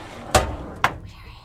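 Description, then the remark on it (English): An unlocked door being opened: two sharp, distinct clunks about half a second apart, like a latch and handle, followed by a faint, quiet room tone. “the door was literally unlocked.”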